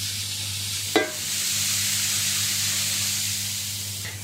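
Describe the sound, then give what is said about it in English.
Steady sizzling of hot sunflower oil on a grill heated for cooking mince, a dense crackling hiss that runs throughout over a low background hum, with one brief clatter near the start. “So you see it's kind of like sizzling now. I kind of want to hear that.”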